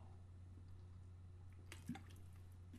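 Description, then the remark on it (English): A quiet sip of water: a brief wet slurp and swallow near the end, set against a steady low hum with no one speaking. “Let's have a bit more water.”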